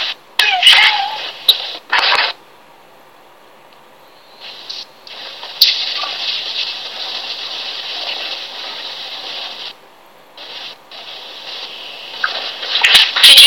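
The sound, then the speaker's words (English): A very small black rescue kitten purring on a person's lap, a soft raspy rumble in long stretches broken by brief pauses, with some scratchy rustling at the start and no voices. “That was a very small black rescue kitten purring.”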